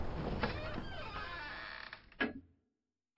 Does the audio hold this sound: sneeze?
no